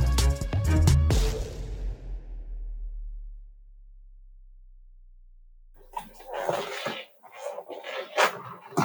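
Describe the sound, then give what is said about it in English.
A chair lets out a loud, groaning creak at the start that fades into a low hum, then after a quiet pause comes a stretch of scuffling, rustling movement. “The chair is talking.”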